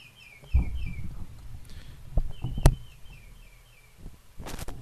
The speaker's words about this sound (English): So I have to wait for the bird to stop chirping.